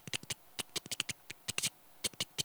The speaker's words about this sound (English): Well, I mean, if you don't know what telegraphic code is, then it's just tapping. That's just tapping.